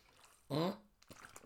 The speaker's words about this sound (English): Sorry, got to grab a mouthful of water there.